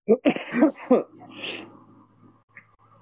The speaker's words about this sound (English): He was dozing off, and that weird yawn / laugh that I did woke him up.